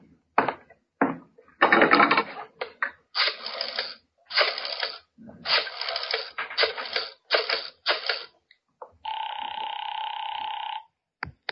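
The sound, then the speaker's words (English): A rotary telephone in a hall being dialed: repeated bursts of clicking, ratcheting whirs as the dial spins back, several in a row, then a steady, buzzing two-tone telephone signal holds for a couple of seconds. “Wonder if I might use your phone, please?”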